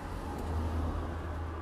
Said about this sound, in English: Also, by the way, sorry if it's loud. We're recording this on the street in the car. In the car. And we have the windows down because it's hot, so if you hear just people walking past or a car, just mind your business.